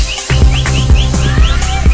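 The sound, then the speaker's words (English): Short, rising whistle blasts repeat over a pounding, bass-heavy South African gqom dance beat, loud and up front, with booming kicks landing steadily beneath them and no voices. “Them South Africans and their whistles.”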